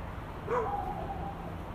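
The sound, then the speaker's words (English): A dog barks faintly once or twice in a neighborhood at night, the sound drawn out over a steady outdoor background hiss. “Oh, here comes the dogs again.”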